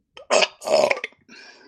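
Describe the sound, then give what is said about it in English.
A loud burp comes out in two gurgling, drawn-out pushes, then trails off into a softer, raspy tail. No one speaks. “the burping has always been an issue, right?”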